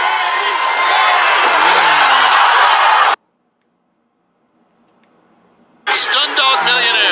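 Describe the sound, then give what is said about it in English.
A sold-out arena crowd in the UK roars and cheers loudly at a wrestling match, then cuts off abruptly into near silence before the dense cheering surges back in just as suddenly. “The great fans in the UK are cheering for here tonight.”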